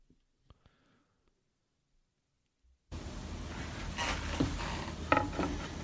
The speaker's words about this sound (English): Jesus, if you're going to make a video, not have a squeaky chair?